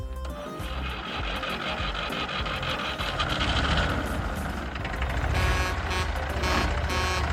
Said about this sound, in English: Oh, what a lovely horn you've got today.